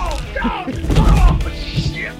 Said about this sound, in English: Oh, shit. Goddamn, that hurts, doesn't it? All right, these punches are very loud in the... I'm sorry about that, everybody.